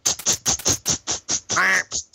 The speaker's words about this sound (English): I always thought it was interesting how the ducks, when they're flying around, sound like some sort of like a bizarre clack.